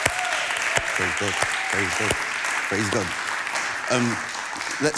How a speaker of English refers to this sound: Amen. Let's clap for Jesus there. Come on.